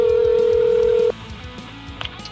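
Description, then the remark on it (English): A loud, steady phone ringing tone from a call placed live on the Southern Maryland Guitar Guru Show sounds for about a second, then cuts off abruptly, leaving a quiet line with faint background murmur. “Ringing, dude.”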